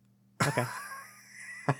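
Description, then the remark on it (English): A few short, harsh coughs: two quick bursts in succession, a brief pause with a lingering rasp, then one more sharp cough, all over a low steady hum with no talking. “I got a touch of the coughs.”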